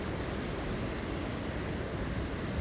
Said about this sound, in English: At the edge of the sea, the rumble and roll of the waters pull on some deep memory of our first floating home, when we were diaphanous, barely matter, eons before the empires of thought and industry were built upon the land.